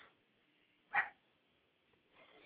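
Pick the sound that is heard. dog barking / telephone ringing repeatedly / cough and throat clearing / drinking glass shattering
dog barking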